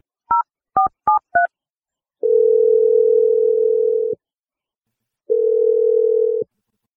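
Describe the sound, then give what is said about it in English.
Four quick touch-tone beeps as a woman's phone number is dialed for a call from the radio morning show Brooke and Jeffrey in the Morning, followed by two long, steady ringing tones separated by a pause of about a second. No one speaks. “Let's just dial her phone number and see what she has to say.”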